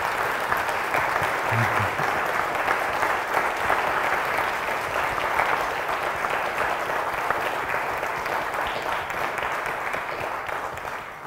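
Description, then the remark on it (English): An audience applauds steadily for about eleven seconds to celebrate its high school and other graduates, a dense, even wash of many hands clapping at once that holds its strength throughout and tapers only slightly at the end. “for our high school graduates and all of our graduates that are worthy of our celebration today, let's have a round of applause to celebrate them.”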